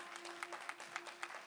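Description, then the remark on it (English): An audience at a Renew Church service claps in a steady, dense patter of applause, with sharper individual claps popping out at regular moments and a faint steady hum underneath. “Right, y'all can give an applause for that.”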